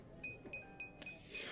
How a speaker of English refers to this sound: Yeah, that's the dentist tapping my teeth at the end there. The clink of the ceramic. Lovely. Yeah, dental appointment.